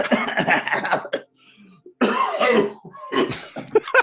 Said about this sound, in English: Yeah, in the pandemic times, no one wants to hear anybody coughing.